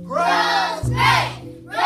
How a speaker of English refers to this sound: Basketball cheering. Look, the people are cheering. They're saying, Gross Greg! Gross!